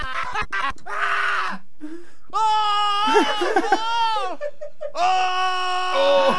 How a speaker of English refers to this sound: I found another sound. Ooh. And it's called Man Screaming